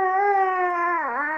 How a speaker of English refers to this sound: He's still not doing well, as we can hear from his cries. He is still in pain.